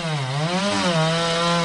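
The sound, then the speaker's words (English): A chainsaw roars as it cuts through wood, its loud buzzing engine pitch sagging and rising under the load for a couple of seconds, with no voices. “producer Laurie Sanders brings us the story of a man who carves out a living as a chainsaw artist”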